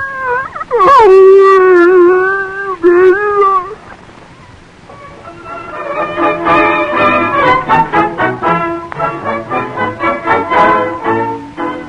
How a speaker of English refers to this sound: His first scientific experiment, teaching his dog to talk.